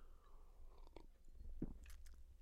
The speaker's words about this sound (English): Let me get a little sip.